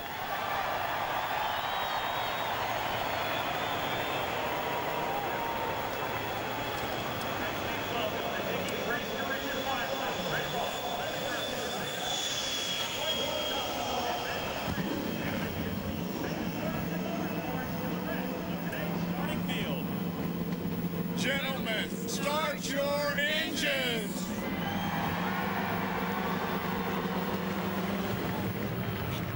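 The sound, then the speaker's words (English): Terry Labonte's race car engine starts up on command halfway through, adding a loud, deep rumble over steady crowd noise, followed by several sharp revs rising and falling in pitch. “Ladies and gentlemen, please welcome … as she gives the command to start the engine to her dad, Terry Labonte.”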